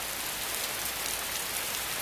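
Steady rain pours down in a dense, hissing wash, constant and even throughout with no pauses or voices, sounding close and moderately loud.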